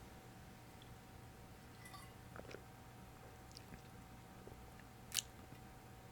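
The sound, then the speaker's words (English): Someone quietly sips water, with soft wet mouth and swallowing noises over a low room hum, then a brief bright clink of a glass near the end. “But, to go on in the book, let you guys think on those points while I take a sip of water.”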